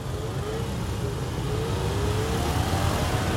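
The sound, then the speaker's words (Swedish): A dense, continuous roar of many small engines revving up together, rising in pitch as a crowd of motorcycle taxis pulls away from traffic lights in Kigali, with a steady low rumble throughout. “Och det är när de sätter igång motorcykelturisterna och far iväg som bisvärm.”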